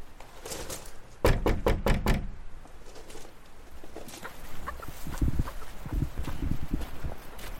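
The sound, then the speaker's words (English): About five firm, evenly spaced knocks on a house door, made to see if someone is home, followed by a quiet pause and soft shuffling, outdoor-sounding movement with no one speaking. “I'm going to knock on the door and see if someone's home quickly.”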